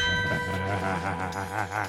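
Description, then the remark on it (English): A gong struck as a closing bell rings out with a loud, sustained metallic shimmer, its layered overtones wavering and pulsing steadily throughout, with no voices over it. “how about that gong?”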